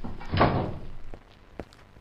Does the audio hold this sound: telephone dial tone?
no